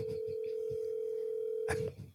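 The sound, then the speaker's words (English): A phone call's dialing tone: one steady, even beep held for nearly two seconds over a low background hum, then cut off abruptly by a short burst of noise. “All right, I'm calling him.”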